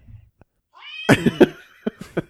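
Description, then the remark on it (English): A cat lets out a drawn-out, wavering meow with a few pulsing swells, followed by two short, clipped meows. It sounds fairly loud, with no one speaking. “Kitty, no.”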